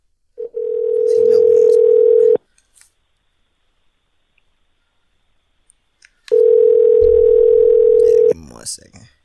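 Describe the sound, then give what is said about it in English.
An outgoing phone call to a friend rings: two long, steady, mid-pitched ringback tones, each about two seconds, separated by a few seconds of silence, with a voice starting briefly at the end. “so I'm actually about to call him.”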